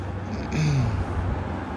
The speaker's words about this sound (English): Here comes a truck. Three people inside. Wyoming, I think, or Montana. FX4, Ford 4x4.